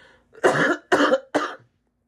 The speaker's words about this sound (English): I'm going to cough.